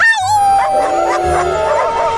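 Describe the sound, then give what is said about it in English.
Several dogs rushing in from every direction howl together in long, wavering tones that slide in pitch and overlap, with a few short yips breaking in; loud, with no talking. “Dogs rush from every which way.”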